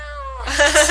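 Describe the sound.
A person imitates a cat's muffled meow made with a sock in its mouth, a single drawn-out, strained yowl that starts tonal and breaks into a rough, breathy sound, loud.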